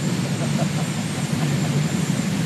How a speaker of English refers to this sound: Or it's a jet engine. Pardon me.